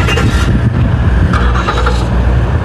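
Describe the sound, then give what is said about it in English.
A car engine starts and runs loud, its low rumble steady with slight surges as it revs, filling the whole moment without any voices. “Gee, those two engines sound exactly the same. What if it's the same kind of car?”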